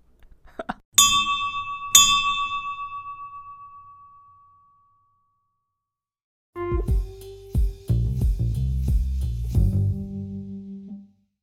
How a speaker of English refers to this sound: Well, now it's time. It's time. It's time to ring that bell. We should just leave this in there. Ring the bell,